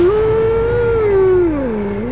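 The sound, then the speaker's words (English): A single long wolf howl answering an earlier howl, a steady mid-pitched tone with rich overtones that wavers slightly and then glides downward near the end, loud and on its own with no voices. “His blood ran cold as another chilling howl answered the first.”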